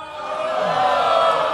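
An audience boos together in a sustained, steady wash of low disapproving voices lasting a second and a half, fairly loud and close, with no clear individual speech.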